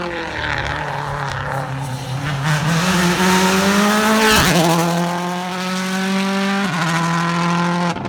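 A rally car engine roars loudly and climbs in pitch, dropping abruptly at two gear changes before revving up again, with gritty tire skidding and scrabbling mixed under the engine note.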